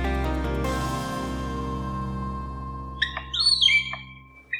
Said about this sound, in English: For the palm cockatoo, being a rock star drummer is a great way to impress potential mates.